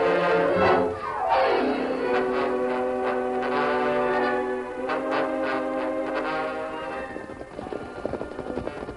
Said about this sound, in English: As they approached a bend, they heard the whistle of number 10 eastbound.